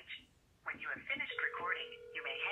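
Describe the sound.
Tinny, phone-line voices talk over a steady answering machine voicemail tone, a single flat beep lasting just under a second before the speech carries on.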